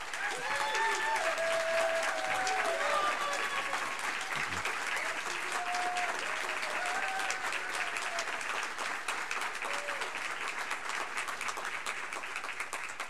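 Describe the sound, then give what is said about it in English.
Sustained audience applause at a debate, welcoming the two candidates Anthony Gonzalez and Susan Moran Palmer, fills the whole stretch, a dense steady patter of many hands clapping at even loudness, with scattered cheers and whoops rising above it. “Given that this debate is limited to 1 hour, we ask that you hold your applause except for two occasions, at the end when we close the debate, and right now as we welcome our two candidates, Anthony Gonzalez and Susan Moran Palmer.”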